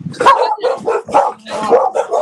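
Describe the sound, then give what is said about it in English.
A dog barks repeatedly in Mississauga, Ontario, Canada. It gives about four or five sharp, loud barks in an uneven rhythm, with brief yelping edges between them. “We got one our dog out here doing the same thing.”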